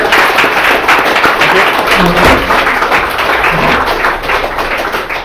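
A live show audience breaks into a round of applause for a guest who spoke about a race, a dense, steady wash of many hands clapping at full volume for the whole stretch, with a few faint voices mixed in.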